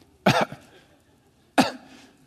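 Two harsh, hacking coughs sound about a second apart, each a short rough burst with a raspy tail and quiet between them, with no talking.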